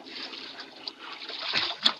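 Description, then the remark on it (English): Water laps and sloshes steadily against a small boat, with two sharper splashes near the end and no voices. “Here I am with the boat.”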